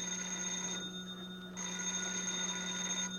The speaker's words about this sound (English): Yeah, I'll get the phone.